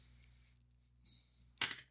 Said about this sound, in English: So go ahead and roll those dice. Okay.